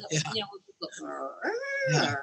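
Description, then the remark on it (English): A person vocally imitates a strange creature sound as witnesses described it, starting as a low growl and sliding up into a higher, whining pitch, fairly loud, lasting a couple of seconds. “And they would say it was a very variably pitched sound that ranged from like a real deep growl to higher, and it reminded everybody of, remember those cappuccino makers that were in style a while ago?”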